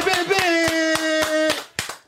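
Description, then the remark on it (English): Hands clap for the team in a steady, even rhythm, about eight sharp claps, while a voice holds a long sustained note underneath for most of the stretch. “Let's clap it up for the team, though.”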